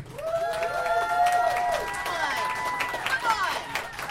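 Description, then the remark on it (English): An audience claps steadily for about four seconds, voting by applause for who won a quiz, while several voices whoop and cheer over the applause, the cheers rising and falling in pitch at a fairly loud, even level. “I want to see what the audience thinks about who won this quiz, so please applaud for one or the other.”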